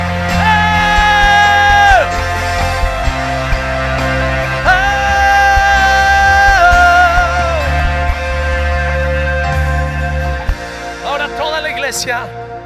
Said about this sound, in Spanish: Y si lo crees, grita.